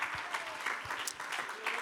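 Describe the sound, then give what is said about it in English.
A church audience claps their hands unto the Lord before the sermon, a dense, steady wash of many overlapping claps at an even level, with a few faint vocal sounds mixed underneath. “Let's clap our hands unto the Lord and magnify.”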